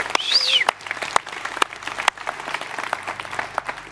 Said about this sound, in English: Church, would you stand up with me? Yep, everybody. And real quick, would we celebrate as we just have more people in our family? You can clap, you can cheer, whatever you want.